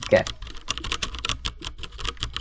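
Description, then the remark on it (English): Quick, steady typing on a mechanical keyboard with tactile MX Brown switches, a dense run of soft, muted clacks, with a brief murmur of a voice at the very start. “Yeah, I'm mostly a fan of the MX Brown. They're not quite so loud.”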